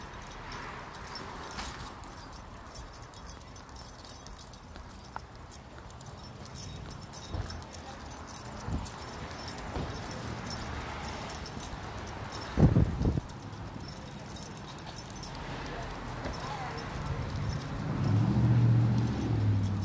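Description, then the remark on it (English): Steady outdoor noise of a busy street with lots of cars passing, one vehicle rumbling louder toward the end, while metallic jingling, like keys or a leash tag, clinks. No one speaks. “Street got busy. Lots of cars around.”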